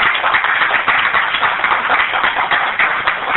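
A church audience claps a hand clap of praise for those who took part in homecoming, a dense, steady wash of many hands that stays loud and even for a few seconds with no voices on top.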